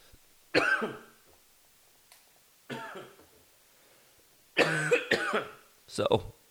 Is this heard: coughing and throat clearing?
yes